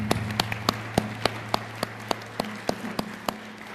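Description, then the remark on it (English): Applause from a church audience in Southeast Nebraska, with sharp, fairly steady claps rising over a dense patter of hands and a low background hum, and no one speaking. “So let's give ourselves a round of applause.”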